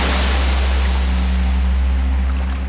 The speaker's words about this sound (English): All along, the waves kept pushing further up the shores until one day they woke from their sleep and the waves blocked out the sun and there was no ignoring them anymore.